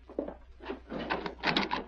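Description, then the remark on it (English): A wooden door is unlatched and pulled open: a quick clack of the latch, then a rattling, scraping creak of wood, with no voices. “Who's there? Open the door. Just a minute.”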